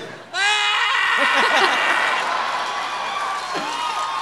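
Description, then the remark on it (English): A voice imitates the cry of Obsidian, a moonicorn familiar: a loud, high, wavering wail with bright harmonics that swoops and trembles, sustained for several seconds, ending in a short falling whine. “A super exclusive competition to which Onyx and her moonicorn familiar Obsidian, can I hear an Obsidian? I have to get really far away from the microphone.”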